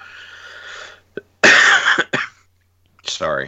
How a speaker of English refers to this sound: I'm sorry, everybody listening at home have listened to me cough as much as I have.